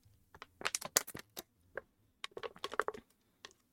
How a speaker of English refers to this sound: I hope you heard the crinkling of my water bottle. I hope my mic picked it up.